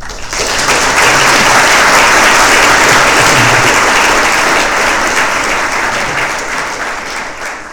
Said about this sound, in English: Thank you for welcoming applause